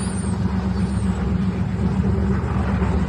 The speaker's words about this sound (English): The boat's going around in circles around the seaplane. Pretty close, I have to say. And then just the waves that it's creating. I think the prop hits the waves at some point. Really? Yeah. You can hear it, actually.